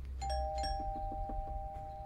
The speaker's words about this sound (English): Okay, I'm just going to ring the doorbell. Okay. You're going to ring the doorbell. Don't ring the doorbell.